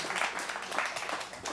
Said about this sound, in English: I guess round of applause.